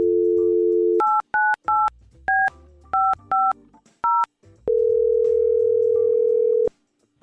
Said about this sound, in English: Let's try to get Emily on the phone, and hopefully she picks up.